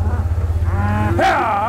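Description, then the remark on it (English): Cattle mooing, a long low bellow with rich harmonics that rises into a louder, higher-pitched call near the end, with no talking, as ranchers move the cattle off a 200-hectare pasture. “the ranchers are moving the cattle off a 200-hectare pasture where they've only been munching away for half a week”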